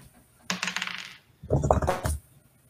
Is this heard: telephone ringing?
no